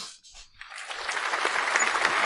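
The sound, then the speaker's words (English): A burst of canned crowd applause from a sound-effect button pressed by mistake, swelling in within the first half second and continuing as steady, dense clapping at a moderate level with no voices. “That was for us, the giant crowd we gathered here today to listen to our lecture”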